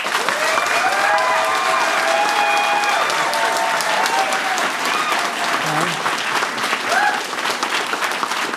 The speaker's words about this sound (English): Pick a side. Okay. If you think that the con side won tonight's debate, round of applause.